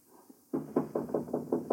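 A quick, steady run of about seven fairly loud knocks on the door of a flat, beginning after a short moment of near silence with no voices.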